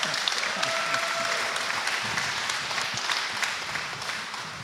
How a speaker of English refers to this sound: Well, welcome our panel here with a round of applause.